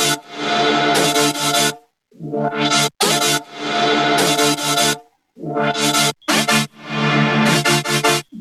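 A bright, buzzy higher layer of a multi-layered trap synth bass with LFOs plays loudly on its own, sustained notes chopped into rhythmic bursts with short gaps and quick stuttering cuts.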